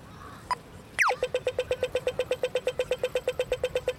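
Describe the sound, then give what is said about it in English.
Pedestrian crossing signal at a crosswalk on a Dublin city street: one short beep, a quick downward chirp, then a fast, steady run of loud ticking beeps, the urgent rhythm signalling time to cross, over a low traffic hum. “Or at crosswalks, where the expectant beep of the pedestrian signal transitions to an urgent rhythm when it's time to move on.”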